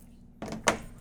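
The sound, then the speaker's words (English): A door opens as someone walks in: a rattling scrape followed by a sharper clunk, both brief and fairly loud after a moment of quiet, with no one talking. “at the door too.”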